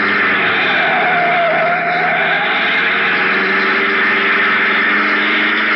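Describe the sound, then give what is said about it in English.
A car roars away at high speed, heading for San Juan, its engine a loud, steady drone with tires screeching continuously underneath, sustained for several seconds with no voices. “Out to the car, fast. We've got about one chance in 10 of getting to San Juan before they catch us.”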